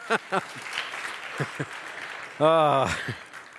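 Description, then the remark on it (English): An audience claps steadily, a soft wash of applause running throughout, with brief vocal bursts and a loud, pitched whoop or shout rising above the clapping near the end. “I mean, somebody should have applauded at this point already, but thank you.”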